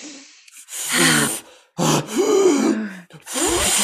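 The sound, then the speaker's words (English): Loud, forceful deep breaths taken as a breathing exercise, in three heavy gasping bursts with a rough, voiced, groan-like edge and short pauses between them; no speech. “Let's do some breathing exercises. In.”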